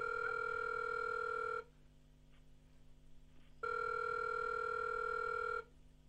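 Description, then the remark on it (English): A forwarded phone call rings through: two long, steady electronic tones about two seconds each, split by a two-second pause of faint line hiss, with no voices. “Your call has been forwarded.”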